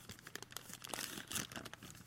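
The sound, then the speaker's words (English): A fancy blue gift bag holding a shot glass from England crinkles and rustles steadily for about two seconds, a dense run of crisp, papery crackles with louder bursts near the middle. No one speaks. “Ooh, it's a fancy, fancy blue bag. Is this the ASMR part of the stream or podcast?”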